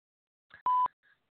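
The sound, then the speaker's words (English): A single steady electronic voicemail beep, loud and clean, sounding after a phone greeting on a call, with faint brief clicks and chirps just before and after it; no voices. “I'm not available right now, so please, at the tone, leave your name, number, and a brief message, and I'll get back to you as soon as I can.”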